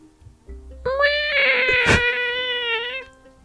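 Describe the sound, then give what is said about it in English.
A pet cat lets out one long, drawn-out meow, loud, holding a steady whining pitch for about two seconds before fading, with no one talking over it. “That's my cat.”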